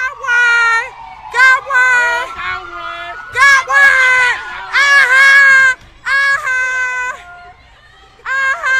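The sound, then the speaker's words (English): A crowd of people looting an Apple store scream and shout over one another, loud, in frantic overlapping bursts that run almost continuously with only brief pauses. “And right now, a bunch of people are looting an iPhone or an Apple store.”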